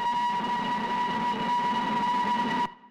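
A train sound effect: a sustained, whistle-like horn tone over a steady rolling rumble, loud, holding for under three seconds before cutting off abruptly. No one speaks.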